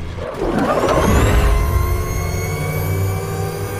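A heavy truck engine in a film scene revs up loudly, its roar climbing and then holding at a steady, droning pitch with a whirring rumble, sustained with no talking.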